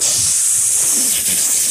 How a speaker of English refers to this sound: Lighting a match. Yes. Oh! First of all, that was clearly a can of Perrier. I have no idea how you got lighting a match out of that. Didn't you hear when it strikes the box?